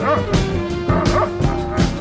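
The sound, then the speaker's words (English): Several dogs bark in quick, repeated bursts, the yips and woofs coming in a loose rhythm over a steady background hum. “And they looking over here barking too, and he's looking at me too, honey.”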